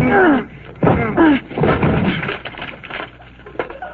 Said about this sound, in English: The whole lock came right off. I guess the door was rotten.